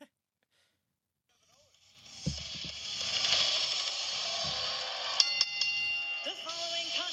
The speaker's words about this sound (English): Where like there's a moment of silence and then the bell hits and then the music hits.